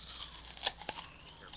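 Crunchy munching, a few crisp bites and crackles over roughly a second and a half, with two sharper crunches standing out against a soft, steady background hiss.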